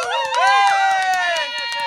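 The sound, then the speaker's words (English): A cheering sound effect: a crowd of voices cheers and shouts together in a loud, sustained burst of celebration, with overlapping whoops that hold steady for a couple of seconds before easing slightly. “And let's just do a Monty cheers, a cheering thing.”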